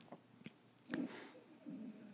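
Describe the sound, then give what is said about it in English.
A dog snoring softly: a couple of low, raspy snorts a moment apart, with faint clicks and smacking noises between them and no one talking. “Sorry, my dog's snoring.”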